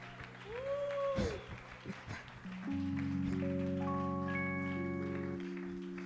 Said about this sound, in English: Hallelujah. Come on, someone give a mighty clap to the Lord.